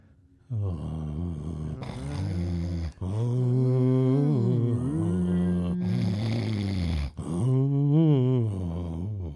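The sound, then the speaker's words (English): A voice imitates a neighbour upstairs snoring loudly in three long, drawn-out breaths, each a buzzing, tonal rumble that slides up and down in pitch almost like a tune. “Our neighbor upstairs is snoring very melodically.”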